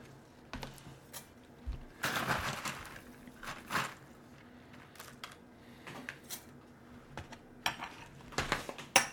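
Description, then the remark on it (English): Soft scraping and light clinks of a spoon against a ceramic cup as one small spoonful of loose tea is added, with a rustle of dry leaves, a few quiet taps spread over several seconds, fairly faint, no talking. “So I'm going to put one little small spoonful.”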